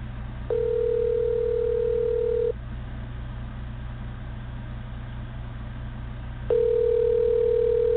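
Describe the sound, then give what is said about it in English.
A telephone call to Alex Jones' cell phone ringing: a steady electronic ringback tone sounds twice, about two seconds each with a long pause between, over a constant low hum. No one speaks. “Okay, we're calling Alex Jones now.”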